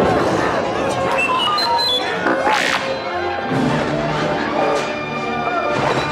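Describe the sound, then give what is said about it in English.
A pile of giant tree trunks, released when vine ropes are chopped through, crashes and tumbles down in a loud, continuous clatter of heavy thuds and cracking wood, with high squeals and cries mixed into the commotion throughout. “But before they could attack, one of the Ewoks chopped through some vine ropes and released a pile of logs. The giant tree trunks crashed down on the stormtroopers.”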